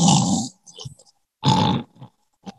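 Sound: imitated loud snoring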